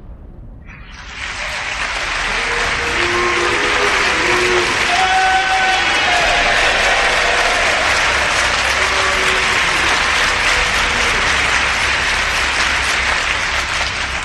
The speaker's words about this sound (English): Yes, I heard both the applause and the boos.